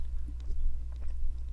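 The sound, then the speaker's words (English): Soft, muffled chewing with the mouth closed and lips sealed, with a few irregular moist bites and smacks over a steady low hum. No one speaks. “You chew with like a perfect seal on your lips.”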